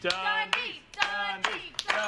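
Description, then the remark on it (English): A slow clap at the Dundies: about five sharp, evenly spaced hand claps roughly half a second apart, moderately loud, with a person's voice murmuring underneath. “Everybody deserves a slow clap.”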